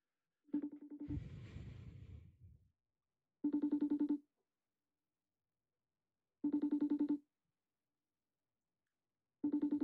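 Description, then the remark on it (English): A FaceTime video call rings out: a bright, warbling ringtone repeats in short bursts about every three seconds, with a brief noisy rustle after the first ring and no one speaking. “I think we should FaceTime him. Just say hello. Just a hello and goodbye. Let's see if he answers.”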